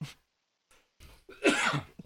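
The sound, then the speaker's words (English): A person with COVID coughs: a short burst followed by a harsher, louder cough with a rough, chesty rasp, then a brief trailing catch of breath. “That was a COVID cough.”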